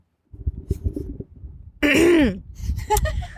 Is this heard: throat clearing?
yes